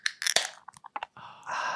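A Carlsberg beer can is cracked open: a few sharp metallic clicks and crackles, then a steady fizzing hiss that carries on to the end. No one speaks.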